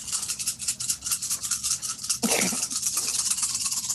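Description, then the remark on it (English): A handful of eight six-sided dice rattles and clatters continuously, fairly loud, with a brief heavier tumble midway before the busy rattling carries on to the end; the dice are rolled for damage from a sneak attack and a short sword. “It's all the dice.”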